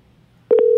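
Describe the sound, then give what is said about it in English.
A steady, loud electronic phone tone starts abruptly halfway through after near silence, with a couple of faint clicks at its onset, like an outgoing call ringing on the line. “Oh, he's ringing.”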